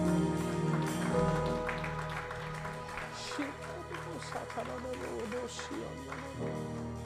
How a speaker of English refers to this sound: Somebody shout and give God praise in this place. Hallelujah, Jesus. Clap your hands and give God glory.